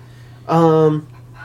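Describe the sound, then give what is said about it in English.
A single short dog whimper, a drawn-out tonal whine lasting about half a second, clear over a steady low background hum. “Somebody's got to bring the stupid dog down.”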